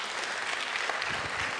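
An audience applauds, a dense, steady wash of many hands clapping at once, sustained at an even loudness throughout the short stretch with no voices standing out.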